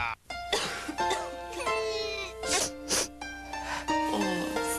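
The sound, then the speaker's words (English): A person coughs repeatedly in short, harsh bursts spread across several seconds, heard over a steady tonal musical background with no talking. “Because relieving your cough and cold often means taking a cough syrup and a cold medicine, Vicks introduces relief that replaces both.”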